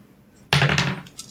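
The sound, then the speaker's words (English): Dice are rolled for initiative and clatter onto a table in a sudden burst of rattling hits that fades over about half a second, followed by a faint final tap; fairly loud, with no talking. “Yeah, everyone roll initiative.”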